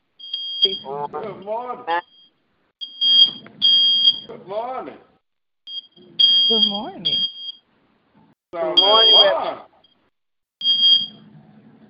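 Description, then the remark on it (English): Repeated high-pitched electronic alarm beeps sound in clustered bursts, like a smoke detector chirping, recurring throughout while several people on a phone line talk and greet one another over them. “I hear some alarms, so who else on the line want to check in on this?”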